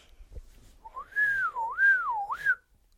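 A six-year-old boy whistles a single wavering tone that rises and falls in smooth swoops, clear, with no talking over it.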